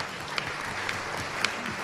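A church audience applauding together, a steady, dense wash of clapping with a few sharper claps standing out, moderately loud and continuous throughout, with no voices.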